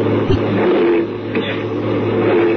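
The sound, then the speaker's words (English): A heavy truck engine roars and revs continuously and loudly, with a couple of brief harsh grinding bursts as gears clash and fail to catch while the driver of the truck, which has no brakes, tries to get it into gear. “I can't get the gears to mesh.”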